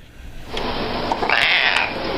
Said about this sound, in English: Pussy cats. Cats like our very own Suki.